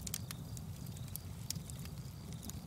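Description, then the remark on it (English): A campfire crackles steadily, with irregular sharp pops and snaps over a soft, low rumble of burning. It is fairly quiet, with no voices. “And now, let's head to the campfire”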